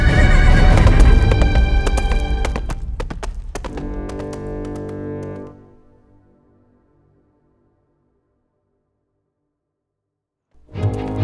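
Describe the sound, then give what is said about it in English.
A horse named Hannibal, borrowed from Billingsgate's stable, whinnies loudly over the clatter of hooves as it is ridden off, the sound fading away after about five seconds into silence before a burst of noise returns at the very end. “Using the thick smoke as a cover, I managed to escape back into the stable where I borrowed one of Billingsgate's horses.”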